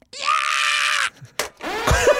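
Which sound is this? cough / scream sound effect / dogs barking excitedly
scream sound effect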